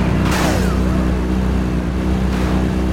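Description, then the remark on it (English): A steady, droning car engine hums continuously at a loud level, with brief whooshing swells of noise passing over it, like a vehicle cruising along in a video game. “We just literally ran into a, bro, it's impossible to drive this car without hitting NPCs.”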